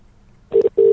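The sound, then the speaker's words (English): A phone line's electronic tone sounds after a moment of near silence, a steady loud beep that cuts off briefly and then starts again, like a call being placed and ringing through. “It's ringing. It's like it's working.”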